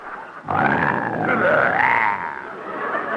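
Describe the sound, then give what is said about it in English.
A caged lion roars once: a loud, drawn-out harmonic growl with a wavering, rising-then-falling pitch that lasts over a second before easing into a lower, rougher rumble. “Benny, you're not afraid of that lion, are you? Of course not. If he roars again, I'll go in that cage and slap his silly face.”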